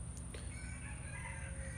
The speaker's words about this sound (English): I was gonna say the birds stop, but now we got chickens and roosters in the background